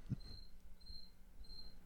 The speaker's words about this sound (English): It's a cricket.